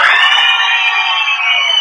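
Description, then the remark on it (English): An audience made up of teams yelling and cheering: a loud sustained wash of many high-pitched voices that holds steady for about two seconds without any single voice standing out. “Well, first off, y'all seem like y'all want to yell, so I'll get acquainted with everybody.”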